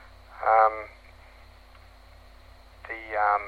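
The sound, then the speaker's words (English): Analog two-way radio audio from a handset close to the other radios, at good signal strength: two brief bursts of a narrow, tinny voice, one near the start and one at the end, over a steady low hum and a faint continuous hiss. “Okay, this is an example of how analog audio sounds.”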